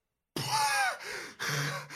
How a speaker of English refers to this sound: You gasp at last. You can breathe again.